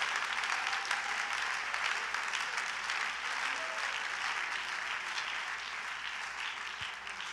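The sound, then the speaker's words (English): An audience claps hands in praise of God in a dense, continuous wash of applause, many hands blending into a steady roar that holds fairly even in loudness for the whole stretch, easing only slightly near the end. “Come on, clap like you really believe it.”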